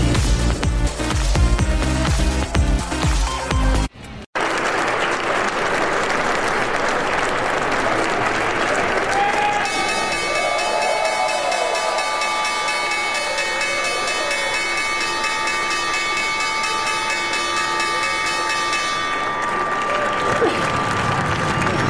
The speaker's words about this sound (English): That was the opening bell back on Wall Street, of course. Lots of cheering and shouting